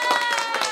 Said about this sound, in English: Can we get an audio on that? Oh. Aaron, some clapping or some cheering?